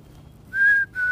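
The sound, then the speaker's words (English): A person whistles an imitation of a black-capped chickadee call, calling back to the birds: two clear, pure, steady notes, the first held a moment and the second following right after at a similar pitch, with no talking. “But I feel like my chickadee impersonation is a good one.”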